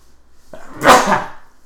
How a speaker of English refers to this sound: Oh, I gotta sneeze.